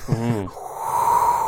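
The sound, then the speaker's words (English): A person vocally imitates the wind: a short low moaning voice, then a breathy, hollow whistling whoosh that holds steady for about a second, fairly loud. “put out like that wind sound effect right here.”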